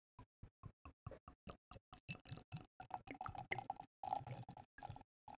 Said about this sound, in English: You can literally hear the fizz of the bubbles. That's delightful.